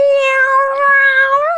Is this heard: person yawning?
no